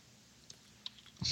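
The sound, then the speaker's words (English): A few soft, irregular keyboard taps, quiet clicks spaced apart with a slightly louder clack at the end, no voices. “Stop typing. I'm talking to you.”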